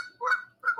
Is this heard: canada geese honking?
yes